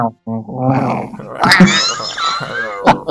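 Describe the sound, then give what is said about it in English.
A person imitates an angry dog with a run of loud, gravelly snarls and growls, rising into a harsher burst midway and ending with a short sharp snarl. “Angry, adorable snarls.”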